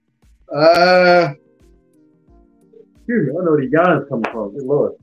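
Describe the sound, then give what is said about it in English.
A short, voiced yawn, a steady, droning groan lasting under a second, followed after a pause by a person talking. “Excuse me, I don't know where the yawn is coming from.”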